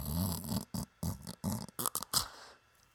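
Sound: imitated snoring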